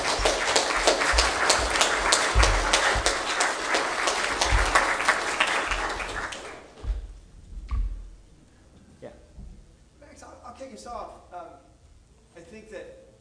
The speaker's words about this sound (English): Give you applause first, because that was awesome.